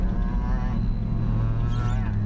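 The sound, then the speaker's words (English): A truck engine revs behind a minivan on the road, a heavy, continuous low rumble whose pitch swells and eases over a couple of seconds, with no one speaking over it. “Can you guys hear him behind me? You know, revving it.”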